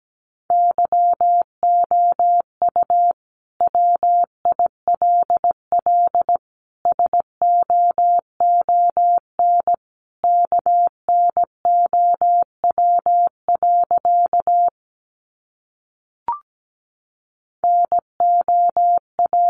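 Morse code beeps at 17 words per minute, sending sentences built from the top 400 words: a single steady mid-pitched tone keyed rapidly on and off in quick dots and dashes, grouped into words with short pauses between them. No voices are heard.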